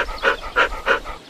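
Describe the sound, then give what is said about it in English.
In the video game Minecraft, a wolf just tamed as a pet by being given a bone pants in quick, even bursts, three breathy huffs spaced about a third of a second apart, with a soft airy rasp and a faint tonal edge, heard alone without talk. “Here, I'll give this wolf a bone. Now, he's my pet.”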